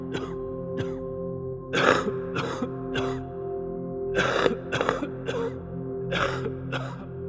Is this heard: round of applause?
no